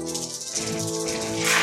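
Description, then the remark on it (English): A dense, continuous clatter of many dice tumbling and knocking together, a busy rattling texture that grows louder and brighter toward the end, with no voices. “We don't always roll dice, but when we do, there's a lot of them.”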